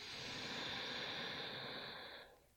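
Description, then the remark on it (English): A long, steady inhale drawn through the nose during a guided breathing exercise, airy and hissing for about two seconds before fading out. Quiet, with no voices present. “Breathing in new energy.”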